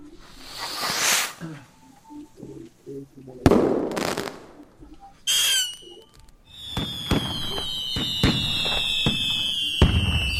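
Fireworks sound effect: a few whooshing launches and sharp pops, then a long descending whistle over rapid crackling bursts that continue to the end, loud and close.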